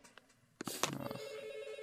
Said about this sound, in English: And my phone's ringing. That sucks.